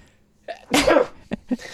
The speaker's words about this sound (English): I did have something after all. It was a sneeze.